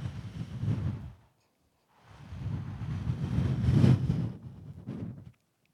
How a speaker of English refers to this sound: The wind probably picks up. The direction of the wind changes. The breeze, it just becomes evident there's a shift. And then you probably just hear that first little gust.